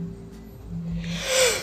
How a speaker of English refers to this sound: I just sneezed into the mic.